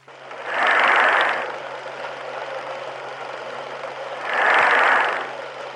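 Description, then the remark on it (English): An iron lung forces air into a patient's lung so the patient can breathe, pumping in two slow, loud whooshing surges about three and a half seconds apart, over a constant mechanical hiss and a low steady hum. “And that sound that you'll hear is the air being forced into the lung so that the patient can breathe.”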